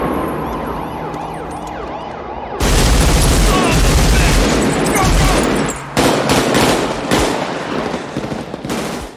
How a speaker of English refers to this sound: I'm not sure which guy it was, but he pulls up a semi-auto rifle and just start, it might have been automatic, a full auto, and just starts blasting from inside the car, blowing out the windshield, the front windshield as you're driving.